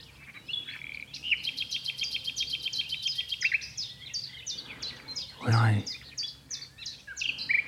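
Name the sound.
nightingale singing at dawn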